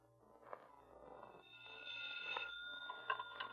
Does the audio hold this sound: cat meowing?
no